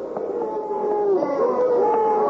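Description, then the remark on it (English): A large arena crowd jeers and boos after a fight in a steady, sustained roar, with drawn-out wailing voices rising and falling over the din, loud and continuous throughout. “Oh, listen, Tom. Yeah, the citizens are angry.”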